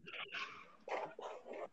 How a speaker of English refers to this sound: I just coughed.